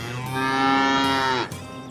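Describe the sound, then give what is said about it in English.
A single long, loud moo from a sick cow named Bessie, with a rich harmonic tone that swells and then cuts off abruptly, with no talking. “Since time immemorial, a veterinarian could give you a diagnosis for your sick cow.”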